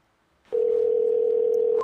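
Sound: telephone call tone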